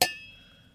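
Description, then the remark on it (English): A single bright clink of glasses tapped together in a Christmas toast, with a short high ringing tone that fades quickly into quiet. “Thunk.”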